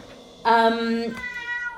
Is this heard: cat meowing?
yes